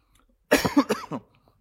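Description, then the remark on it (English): A short burst of coughing and throat clearing, a few quick rough hacks lasting under a second, fairly loud against a quiet background. “I have a cough drop. It's not working.”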